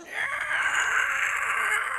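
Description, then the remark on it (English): An instrument gives a shrill, sustained keening tone that wails steadily for two seconds, high and piercing like a banshee's cry, with a faint breathy hiss above it and no talking. “It's the shrill keening of an instrument that sounds like the wail of a banshee.”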